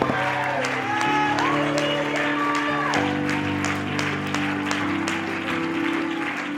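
A church audience claps their hands steadily and shouts unto God with rising, wavering cries over sustained organ-like music, the whole thing loud and continuous.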